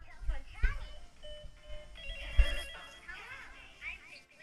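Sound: toy telephone ringing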